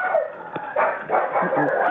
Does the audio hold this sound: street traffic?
no